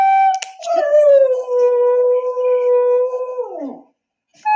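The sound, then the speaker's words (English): A small Cavoodle dog lets out one long, loud howl, starting with a quick yip, holding a steady tone, then sliding down in pitch before a new howl begins. “What does it mean when a Kavoodle howls?”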